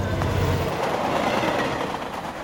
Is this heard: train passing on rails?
yes